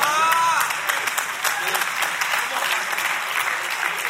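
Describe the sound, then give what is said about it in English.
Steady applause from an audience, a dense wash of many hands clapping at a fairly loud, even level for about four seconds, with a brief higher tone at the start. “I don't know why y'all are clapping for that.”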